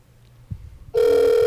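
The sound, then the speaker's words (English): A steady, loud ringback tone on an outgoing phone call begins after a soft thump and faint low hum, holding one mid-pitched buzzing note without a break. “Or he could be listening and dodging this call.”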